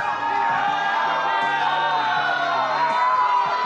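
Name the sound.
crowd cheering and whooping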